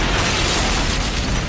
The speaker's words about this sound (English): And then there's this explosion.